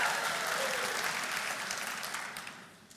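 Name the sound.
audience applause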